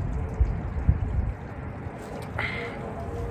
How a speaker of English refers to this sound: Right now I'm enjoying myself some cacti, Travis Scott Agave Spike Seltzer. Let's take a sip.